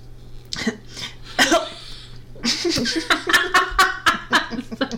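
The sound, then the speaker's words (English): A person coughs several times, sharp bursts that blend into breathy, laugh-like fits with a steady low hum underneath. “Like I said, I'm coughing.”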